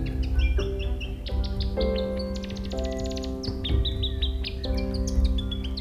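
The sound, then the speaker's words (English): A New Zealand robin sings a bright, repeated series of clear whistled phrases and quick chirps, fairly loud, over a steady low sustained tone in the background. “With the work of Birds New Zealand and other conservation groups around Dunedin, I hope we one day get to see and hear the robins in the city.”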